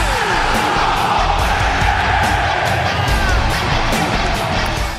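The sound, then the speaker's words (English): A huge arena crowd yells wrestler Adam Cole's NXT entrance catchphrase, "Adam Cole, baby," together with him, a dense, loud roar of many voices that stays steady for the whole stretch, with whoops and cheers mixed in. “The entire crowd yells that out with him.”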